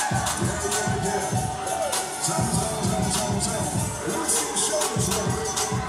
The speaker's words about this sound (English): Thunderous ovation. Look at the signs for Lola Bay. Absolutely amazing. The crowd loves her here.